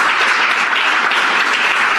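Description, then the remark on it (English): A crowd applauds steadily, many hands clapping in a dense, loud, continuous wash of sound with no voices standing out. “They're excited about it and they clap.”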